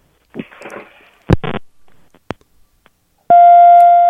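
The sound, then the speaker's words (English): Some shuffling and a couple of sharp clicks, then a loud, steady telephone line beep sounds abruptly and holds unbroken to the end, buzzy. “That was a weird beep.”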